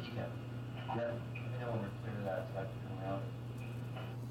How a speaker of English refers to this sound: That's the sound of the engines, the thing that sounds like the cicadas. Yeah. Yeah, I mean, the higher, most high-pitched thing.